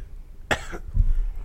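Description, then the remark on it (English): A single short, harsh cough bursts out, followed by a low muffled rumble and quiet background noise. No one speaks. “I thought you were going back to the cough.”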